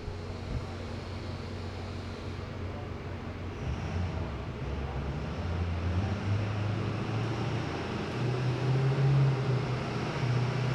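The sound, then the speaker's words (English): A truck engine drones steadily during a test as the truck rolls up into the hardest peak of the test, its low hum rising and strengthening toward the end as the load increases, with a broad rumbling noise and no voices. “And the truck is rolling up right now.”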